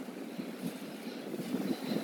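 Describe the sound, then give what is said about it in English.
Steady wind rushes and buffets against the microphone, a continuous low roar with gusty swells, no voices present. “Today is windy.”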